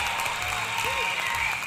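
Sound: applause sound effect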